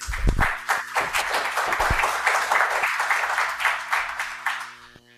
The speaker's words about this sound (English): And with your applause, please join me in welcoming Dr. Liam Fox.